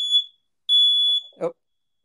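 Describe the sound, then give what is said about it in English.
A malfunctioning fire alarm gives two loud, piercing high-pitched beeps, a short one then a longer one, followed by a brief muffled clunk. “Oh, sorry, that some reason the fire alarm malfunctioning there. I think that's the loud noise.”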